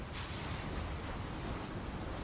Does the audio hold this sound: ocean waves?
yes